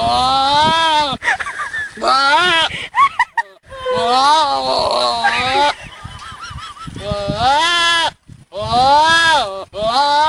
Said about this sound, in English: And now it's time for Happy Sounds While You're in Quarantine. Here's a goat imitating Jerry Lewis.